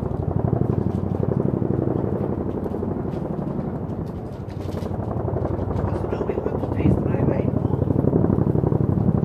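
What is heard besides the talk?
helicopter flying overhead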